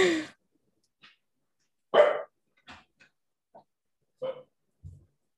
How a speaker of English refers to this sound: oh, let me just deal with my dog one moment. No worries.